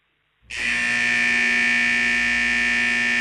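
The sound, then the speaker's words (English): A steady electrical factory buzz switches on abruptly after a brief silence, then holds at constant loudness, a dense droning hum with bright harsh overtones, continuous with no talking. “Okay, the first sound we have is a factory buzz.”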